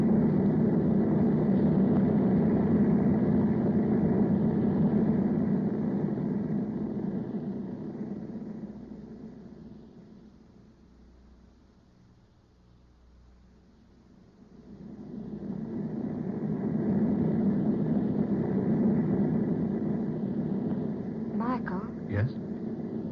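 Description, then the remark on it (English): A steady, rumbling airplane engine drone as the plane flies above the rain on its way to land at Monterey, fading to a softer hum midway before swelling back to full strength, with a couple of brief high squeaks near the end. “We flew above the rain before it started.”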